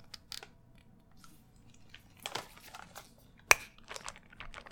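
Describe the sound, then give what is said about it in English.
A single strawberry squished inside a plastic bag as a first step in extracting strawberry DNA: irregular crinkling and soft wet crunching, with one sharp crackle partway through. No one speaks, and the sounds stay fairly quiet. “One strawberry. Let's squish it.”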